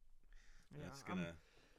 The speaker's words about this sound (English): bless you. Bless you. Man, talking about the Cowboys making me sneeze.